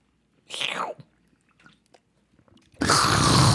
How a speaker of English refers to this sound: All types of hydration. Speaking of which, let me take a sip.